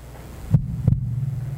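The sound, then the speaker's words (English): A deep, muffled heartbeat thumps twice in a quick lub-dub pair over a low steady hum, resonant, with no voices present. “And with that first heartbeat of man, something started.”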